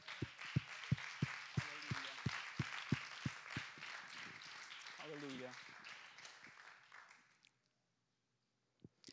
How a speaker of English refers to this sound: I appreciate them, and I think it would be fitting for us to just give them one big hand clap of appreciation.